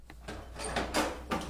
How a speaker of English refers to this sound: As he tried to settle on a course of action, he was interrupted by a knock at the front door.